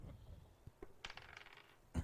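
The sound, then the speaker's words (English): A quick clatter of dice tumbling and rattling across a table, a burst of light clicks settling within about a second, then one sharper knock, fairly quiet. “I failed it by 11. I rolled an 8.”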